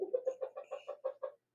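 A chicken, George, clucks in a quick, steady run of about nine short, throaty notes, fairly clear, with no other sounds around it.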